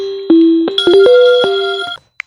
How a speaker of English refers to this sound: Sorry about that, guys. I forgot to turn my phone off.